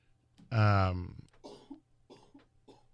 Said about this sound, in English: got a little bit of a cough